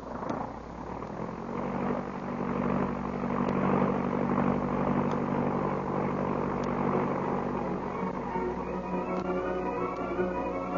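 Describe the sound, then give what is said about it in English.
A propeller airplane engine roars steadily, a dense continuous drone with sustained harmonic hum that holds loud as the plane takes off, no voices over it. “Well, get in the plane. All right, boss. I get in. All set? May we? We're off.”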